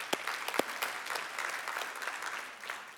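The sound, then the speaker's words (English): A crowd claps for God during a sermon, many hands producing a dense, continuous patter with a few sharper individual claps standing out, sustained at moderate loudness throughout. “Yeah, you can clap for God.”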